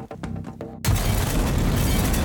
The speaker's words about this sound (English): Then suddenly the ground shook and I could feel the dull concussion waves hit my ears as the Adamson A exploded.